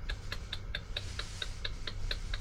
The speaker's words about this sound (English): And of course the clock was ticking.